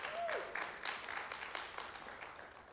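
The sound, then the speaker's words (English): A church audience claps steadily to celebrate three decisions for Christ at VBS, a dense patter of many hands at a moderate loudness that holds for a few seconds and eases off slightly toward the end. “So we're real excited about that. Y'all better clap.”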